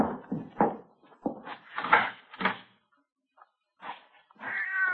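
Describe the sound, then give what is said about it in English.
A cat meows and yowls repeatedly in drawn-out, wailing cries, a few short calls followed by a long rising caterwaul, fairly close and loud with brief pauses between. “It's just a cat out in the street, you know, out in the side alley maybe, huh?”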